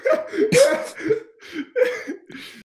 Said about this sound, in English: Someone in the crowd starts coughing up sawdust. the mummy coughs up sawdust.